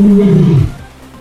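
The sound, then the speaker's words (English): A single loud, deep roar from Zabu, a big cat, starting strong and sliding downward in pitch before cutting off abruptly after about half a second, leaving faint background hiss. “Just a big pussy cat.”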